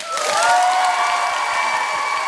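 A live audience claps steadily for a couple of seconds, voting by applause for a contestant to take home the crown, a dense wash of applause with some sustained whoops and cheers riding over it, fairly loud throughout.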